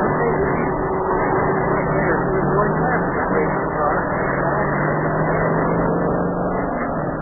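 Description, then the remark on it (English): A racing car engine roars steadily and loudly as the mayor races Sparky around a track, a continuous, droning motor sound that holds its pitch and volume from start to finish. “I'm pushing down the gas pedal. Here we go. Hey, the motor started.”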